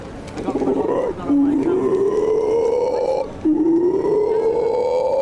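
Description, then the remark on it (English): A human voice imitates a howler monkey: two long, loud, droning calls that slowly rise in pitch, with a short break between them and no other talk. “Howler Monkey came up on University Challenge yesterday.”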